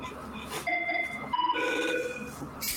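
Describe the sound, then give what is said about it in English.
A Cisco desk phone ringtone plays a short melodic pattern of bright, steady tones that step between pitches, fairly clear, with faint background noise and no talking. “Or ringtone from Cisco. Even better.”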